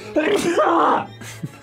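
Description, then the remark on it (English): One loud sneeze with a drawn-out, strongly voiced wind-up, followed by a brief quiet breath near the end. “I'm sneezing.”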